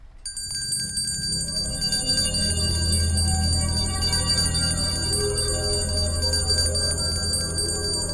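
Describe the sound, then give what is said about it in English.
A silver bell in the audio drama The Winterman and the Silver Bell rings out once near the start, its bright, shimmering tones sustaining for several seconds over a low, steady rumbling drone, with no one speaking. “Give him the bell.”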